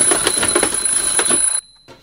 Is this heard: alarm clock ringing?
yes